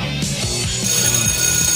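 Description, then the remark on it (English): A school bell rings loudly and without pause for about two seconds, a harsh, metallic clatter with a shrill high overtone sustained throughout. No voices are heard. “It's time for school, but you're not going to be saved by this bell.”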